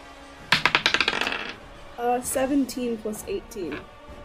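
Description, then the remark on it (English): Dice, picked up too eagerly during a tabletop role-playing game, spill onto a hard tabletop in a quick burst of rattling clicks that bounce and fade within a second, followed by a person talking. “I tried to pick up my dice a little too excited.”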